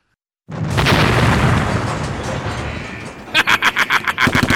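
An explosive charge set by a door blows up: a sudden, loud blast bursts from silence and rolls into a long, roaring rumble that slowly fades, then a rapid string of sharp, evenly spaced bangs breaks out at the end.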